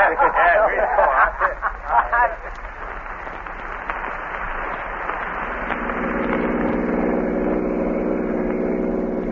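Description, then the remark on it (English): A car engine hums steadily, growing into a constant droning rumble as the car drives along a road, with some muffled voices heard over it at the start. “pull right over here, off the road.”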